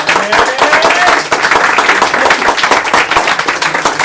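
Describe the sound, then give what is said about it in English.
An audience at Derech Emet breaks into sustained applause, a dense wash of many hands clapping steadily and loudly for several seconds, with a few faint cheers mixed into the noise. “That's definitely a round of applause right there.”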